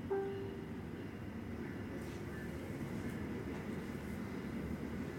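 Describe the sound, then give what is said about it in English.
A train rumbles past in Chicago, a steady, heavy roar of wheels and clatter that holds for several seconds, with a brief tonal hum at the very start and no voices. “And that advertisement is brought to you by Trains.”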